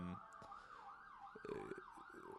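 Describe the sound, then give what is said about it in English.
Emergency vehicle sirens going by, wailing in a steady rising-and-falling sweep, loud, with faint traffic rumble and brief background noises underneath. “I forget what we were talking about too, these sirens going by”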